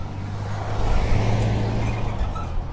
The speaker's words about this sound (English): Why are there so many cars? Goodness.